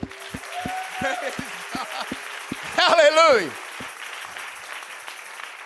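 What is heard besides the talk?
audience clapping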